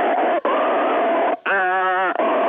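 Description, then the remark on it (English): A voice imitates someone gasping and choking for air on a banana in the throat, with long raspy, breathy heaves broken by a strained, bleating vocal groan, then more harsh wheezing. “When I start gasping for air, I'm like,”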